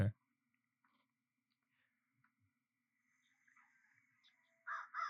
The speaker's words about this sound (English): Crow. Yeah. It's the American crow.